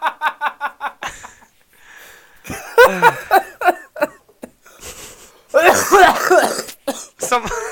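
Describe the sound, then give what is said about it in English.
A hard coughing fit: a quick run of short rhythmic hacks, then louder, rasping bursts of coughing with strained, throaty gasps in between, loud and uneven. “Sorry, I coughed so hard I fired.”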